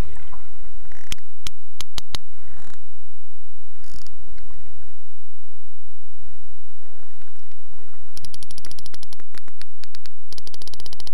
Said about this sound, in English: The sperm whale makes this clicking sound by pushing air through the space in its big hollow head.